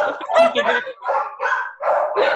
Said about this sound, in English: oh my gosh, my dogs are barking.